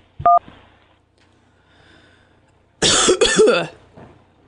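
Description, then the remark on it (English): A brief electronic two-tone beep sounds first, then after a quiet pause comes a loud, harsh fit of coughing in two quick bursts, followed by a faint short sound. “I got a cough.”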